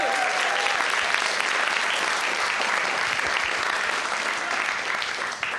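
A large audience claps steadily and loudly, a dense wash of applause that fills the room for several seconds without pause, with a faint murmur of voices underneath.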